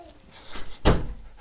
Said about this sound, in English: Yeah, and go and shut the door when you go.